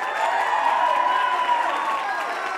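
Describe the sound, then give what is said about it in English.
A crowd applauds and cheers for a man being introduced before an exhibition boxing match, with steady, dense clapping, while whistles and raised voices rise and bend above it. The sound holds loud and even for a few seconds. “So, guys, I want to give a big round of applause for the man that made me, the one, the only,”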